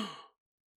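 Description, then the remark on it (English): A single dramatic gasp by a detective looking through a hole in an elevator ceiling, a quick breathy intake of air lasting about a third of a second, clear, then silence. No talking around it. “Detective Dan gasps.”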